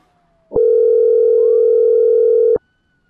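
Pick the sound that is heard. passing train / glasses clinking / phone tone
phone tone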